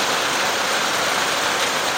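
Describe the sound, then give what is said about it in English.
Heavy summer rain pours down on a very hot day in a steady, dense hiss, loud, with no breaks or distinct drops standing out from the constant wash of sound. “I'm not even sure if you can hear me through the rain.”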